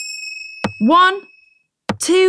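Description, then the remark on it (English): Two sharp, hollow knocks of a cricket bat tapped on the floor, about a second apart, each followed at once by a short voiced call. Faint steady high tones hum underneath at the start. “Tap the cricket bat on the floor 3 times.”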